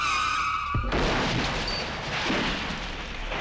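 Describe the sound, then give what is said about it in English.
A car's tires screech with a high, wavering squeal for under a second, then a loud crash hits and breaks into a sustained roar of crunching, rumbling debris. No voices. “And they wouldn't until they found evidence in an unlikely place, the scene of a car crash.”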